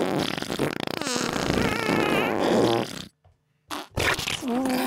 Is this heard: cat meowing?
no